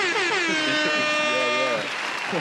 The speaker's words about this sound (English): Let me give you the air horn.